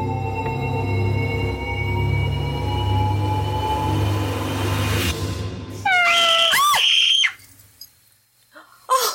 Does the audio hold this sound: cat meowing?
yes